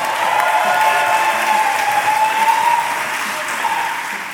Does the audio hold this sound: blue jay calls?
no